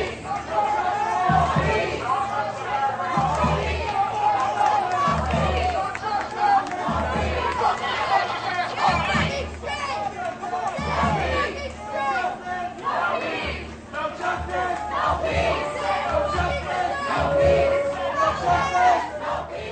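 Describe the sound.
A large crowd of protesters chants "No justice, no peace for Jordan Neely" together in loud, rhythmic unison, the repeated phrase rising and falling over a dense wash of shouting voices and low thumping beats.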